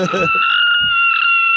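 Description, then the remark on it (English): A woman's long, shrill scream sound effect, played from a soundboard, holds one steady high pitch throughout, loud and unbroken, while low murmuring voices briefly rumble underneath at the start and again midway. “I know that scream. That woman has met you before.”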